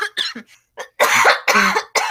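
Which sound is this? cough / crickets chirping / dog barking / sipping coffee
cough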